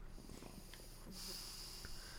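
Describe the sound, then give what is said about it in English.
Heavy, muffled breathing through a glow-in-the-dark gas mask: a raspy draw of air followed by a long hissing exhale, with no talking. “Sounds like Darth Vader. I know. I got a breathing hole.”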